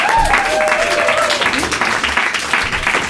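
Sustained audience applause at a comedy show as a comedian is introduced, a dense, steady wash of clapping at a loud, even level, with a few faint whistles or cheers rising through it for the full three seconds.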